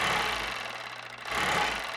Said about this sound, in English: sits at an old sewing machine. He's making a scarf.